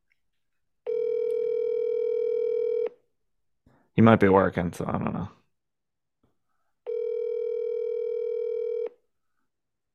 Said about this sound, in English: Tell him to answer the phone.